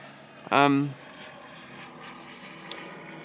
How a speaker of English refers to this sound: Well, a nice plane going over for you. Take that. That's like the sound of summer, eh?